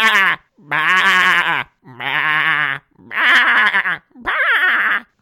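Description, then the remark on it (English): A person imitates a goat with five loud, wavering bleats in a row, each about a second long and separated by short pauses, the voice quavering and nasal. “I would do a goat.”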